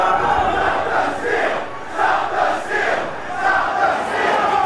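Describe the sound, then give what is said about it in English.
A large mob storming the Capitol in Washington, D.C., carrying Trump flags, shouting together in loud, rhythmic surges, like a chant rising and falling roughly every second, with a constant roar of many voices underneath and no single speaker standing out. “You saw people in the crowd storming the Capitol carrying Trump flags.”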